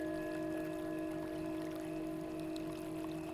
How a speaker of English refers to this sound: You can smell the pine trees and the earth all around you. And as you walk, you suddenly come across a raging river.